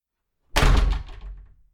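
A door slams shut with a single heavy thud, followed by a short rattling decay as it settles. No voices accompany it.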